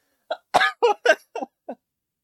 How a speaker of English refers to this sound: I'm in tears recounting it. I'm coughing.